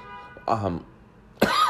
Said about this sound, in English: excuse me, I was hoping for a cough-free podcast, but no.